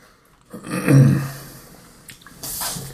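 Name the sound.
cat sneezing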